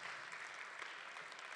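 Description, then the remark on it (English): Steady audience applause for the church's Life Kids children, a dense wash of many hands clapping at once with no clear individual beats, sustained at an even level throughout with no voices standing out. “Why don't we give him another round of applause?”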